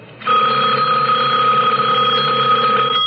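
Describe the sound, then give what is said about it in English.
A telephone rings, cutting in abruptly with one loud, steady, continuous ring of buzzy, bright tone that holds for about three seconds. No one speaks. “The sudden ring of the telephone startled me.”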